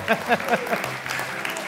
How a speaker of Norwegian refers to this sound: Ja, jeg har kommet ned på to siffra. Det kan vi ta en applaus for.